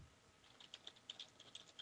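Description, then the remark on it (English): Rapid clicking of keys on a computer keyboard as someone types a message to a chat room, a quick irregular patter of sharp taps with no one speaking. “I hear furious typing.”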